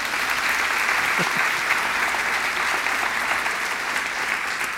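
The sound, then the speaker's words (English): Steady, dense audience applause at a church service fills the whole clip, a sustained wash of many hands clapping at a constant loudness with no pauses or voices breaking through. “Will you stand up, Dad, and just kind of everybody give him a round of applause for...”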